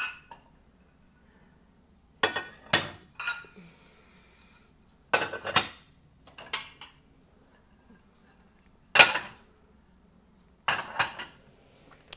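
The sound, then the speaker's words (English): Dishes and silverware clink and clatter in several short bursts, sharp bright impacts spaced a second or two apart with quiet gaps between, as plates and silverware are unloaded from a dishwasher. “how is this working that the plates are bone dry, everything else in the dishwasher is soaking wet. The silverware was wet.”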